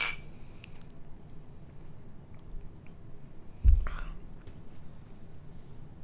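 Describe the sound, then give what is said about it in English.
A single bright clink of beer glasses tapping together in a toast, brief and sharp, set against quiet hiss with faint whispery mouth sounds around it. “All right. Cheers.”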